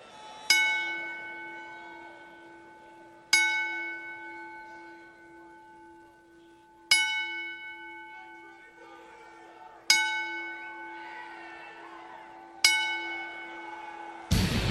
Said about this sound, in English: Now, private services are going to be held this weekend, and we ask everyone to please rise in honor of his father's memory as we toll the bell 10 times.